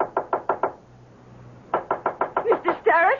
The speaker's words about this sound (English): Oh, hurry. I can't open the door. It's locked. Well, knock on it. Knock. Yes, Miss.